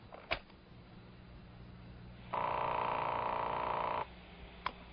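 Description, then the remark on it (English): Over a thin phone-line hiss, a sharp click is followed by one steady telephone ring tone lasting nearly two seconds, then another click, heard on a tape recording of a phone call. No one speaks. “10 days ago, I called her. Here's the call.”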